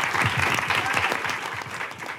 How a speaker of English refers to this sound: but give a hand of applause for these lunatic women. And for you.